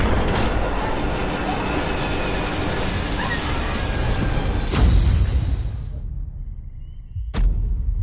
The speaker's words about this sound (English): Your plane has crashed.